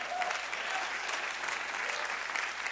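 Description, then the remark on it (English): Steady audience applause for a speaker's 32 years of marriage fills the whole stretch, a dense wash of many hands clapping at moderate volume, with no talking over it. “You can applaud that.”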